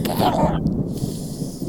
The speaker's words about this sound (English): We have a little bit of bad weather tonight. Yeah, y'all hear that? It's thundering.